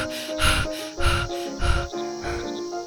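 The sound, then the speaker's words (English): A person imitates shaky, trembling breathing under their breath, with four quick, uneven breaths, each a rough, quivering puff of air with a faint wheezy edge. “sort of sit and, like, eyes, like, sort of this kind of 1,000-yard stare, kind of breathing slightly under my breath, just going...”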